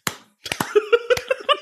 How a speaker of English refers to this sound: Sorry, when does a double just become a slow clap?